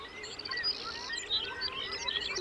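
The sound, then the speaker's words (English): Many birds call and chirp at once in a dense, overlapping chorus of high tweets and whistles, steady and fairly faint, with no talking, on the Arctic coastal plain in Alaska in early June. “In early June, millions of birds arrive on the Arctic coastal plain in Alaska from all over the world.”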